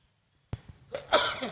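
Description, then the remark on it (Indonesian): A single sneeze from an audience member at a gathering, a sharp breathy intake followed by a bursting, noisy release, with no talking. “Nikmat hadirin bersin.”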